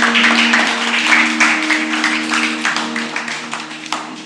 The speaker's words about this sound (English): Hey, can we please give a round of applause for this amazing worship team up here?